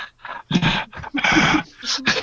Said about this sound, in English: No, the only problem is now, of course, you have the heavy breathing.